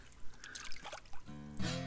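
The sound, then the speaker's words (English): Water trickles and splashes in a few short, quiet bursts, ending in a brighter gurgling pour with a faint tonal ring underneath. No one speaks. “Water.”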